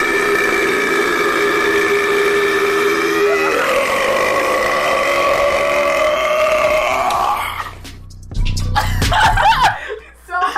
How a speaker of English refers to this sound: No, his whole YouTube page is just burping.